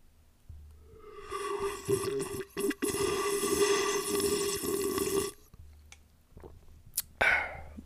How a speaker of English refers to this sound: I do have a bottle of water here. I can try to make a sip for all of you Coffee Talk lovers.